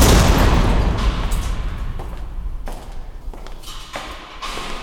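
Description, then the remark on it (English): A huge cage door slams shut with a loud, booming metallic crash, followed by several sharper clanks and rattles echoing at uneven intervals as it settles. “I'm just going to shut this huge cage door and make sure you stay in there.”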